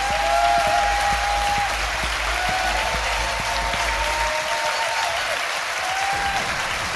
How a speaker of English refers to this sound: please give a massive round of applause to my fantastic guest